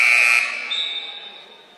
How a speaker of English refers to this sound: They have a whistle at the scores table.